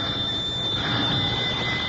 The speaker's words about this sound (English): rang Miss Mamie's old-fashioned doorbell.